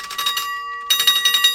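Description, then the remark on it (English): A small bell jingles in two quick bursts of rapid, bright ringing with a short silent gap between, fairly loud, with sustained metallic tones lingering underneath, as someone fiddles with the object. “What did I tell you? Bells and whistles.”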